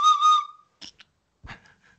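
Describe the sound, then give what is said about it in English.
A whistle is blown in two quick shrill blasts, loud, followed by a few faint clicks and rustles in otherwise quiet surroundings. “Go off that note, where's that whistle at?”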